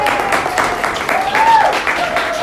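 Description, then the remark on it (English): An audience applauds as the speakers of an evening talk are introduced, with a steady, dense patter of many hands clapping at even loudness, and a faint voice or tone slides through the crowd noise. “If you guys want to applaud.”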